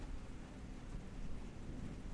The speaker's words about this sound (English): Yeah, no, that was thunder.